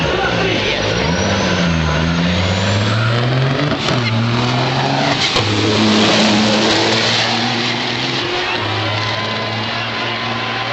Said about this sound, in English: By the way, can I point out in that clip, that was a semi-truck racing a Mustang and winning.